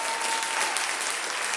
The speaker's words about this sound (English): Come on, let's give him one more round of applause.